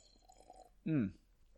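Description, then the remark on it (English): A single short sip of spiced rum from a glass, a brief wet slurp lasting a fraction of a second against a quiet, faintly humming background. “I got a little bit more of this spiced rum. Ooh, baby.”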